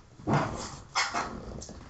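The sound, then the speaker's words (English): A second dog, being called in at the door, barks a few times in short, sharp bursts, with brief pauses between barks and a fainter yip near the end. No one is speaking. “Come on, dog number two. Come on in. Number two dog.”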